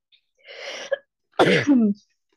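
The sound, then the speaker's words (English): A loud throat clearing followed by a harsh cough with a raspy, voiced tail, two distinct bursts spaced about a second apart with no speech around them; a lingering cough after COVID two weeks earlier. “I had COVID 2 weeks ago, and I can't get rid of my cough.”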